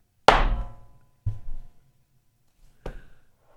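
Three heavy hammer strikes land at uneven intervals, each a sharp metallic impact with a ringing decay, the first loudest and longest, the later two shorter and slightly duller.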